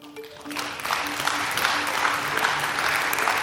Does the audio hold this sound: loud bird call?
no